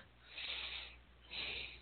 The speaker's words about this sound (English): And you'll have to excuse me. My sinuses are acting really weird. In fact, I may have to be ready to blow my nose again.